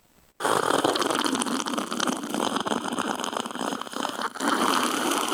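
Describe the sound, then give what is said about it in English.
A long, loud slurping sip of a drink begins abruptly and runs unbroken for about five seconds, with a wet, bubbly, fluttering texture and no talking. “You had that extended sip.”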